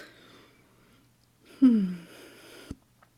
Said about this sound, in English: You're going to hear me yawn.